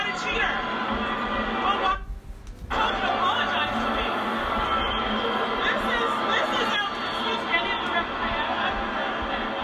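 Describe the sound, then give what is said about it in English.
A noisy tennis stadium crowd during a match, amid confusion over a game penalty with Osaka serving at 4-3, fills the whole stretch with loud, continuous chatter and murmuring, scattered chuckles rising through it, and a brief dip in the din about two seconds in. “It was hard to hear over the crowd, but now I keep playing this because I want y'all to understand the real time of this match.”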